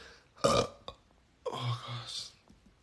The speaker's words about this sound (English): I keep burping from this juice.